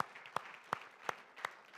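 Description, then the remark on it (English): Applause for people who led a group for the first time, with a few sharp, evenly paced claps standing out over a soft, continuous wash of clapping. Quiet overall, with no talking. “Can we give them some round of applause?”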